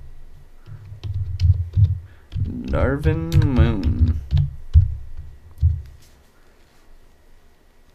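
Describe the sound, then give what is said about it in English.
Quick, uneven computer keyboard clicks tap away as someone looks up poker player Darvin Moon, briefly joined by a man saying a few words, then the typing trails off into quiet. “I don't think anything's typing.”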